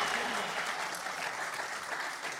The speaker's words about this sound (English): What a finish. Keep the applause going, please, for Anthony Moyles, Desi Dolan and Oisín McConville.